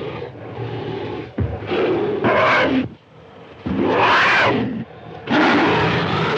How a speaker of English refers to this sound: And yeah, the fight with the T-Rex, they have this really awful sounding squawk roar that they've got for the T-Rex that happens over and over.